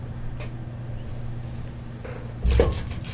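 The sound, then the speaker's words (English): Most of a beer sample is poured out into a dump bucket, a short splash of liquid lasting under a second over a steady low background hum. “I'm going to save a little bit, but I poured out most of my sample there.”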